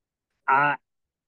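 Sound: person imitating a chicken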